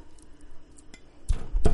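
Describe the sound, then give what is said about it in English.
A pot of potatoes boiling on the stove, its lid rattling and clinking in two quick bursts near the end after a low, quiet background hiss. “Oh, I hear the potatoes boiling.”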